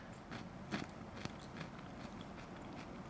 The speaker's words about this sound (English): Because, like, it tastes like peanut butter, but then you've got the crunch of the celery.